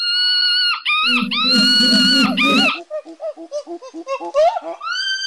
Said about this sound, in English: Which gives us a finished monkey track, as follows.